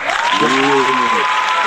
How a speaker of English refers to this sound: Also, we ought to give a good round of applause